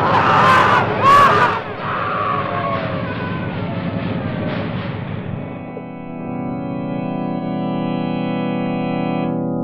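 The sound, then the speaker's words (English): A volcano crumbling apart, shaken to pieces by the vibration of a powerful magnet: a loud, rough roaring rumble with sharp cry-like bursts at the start, which gives way after a few seconds to a steady, low droning hum. “Weren't you killed with the rest of them when the volcano crumbled?”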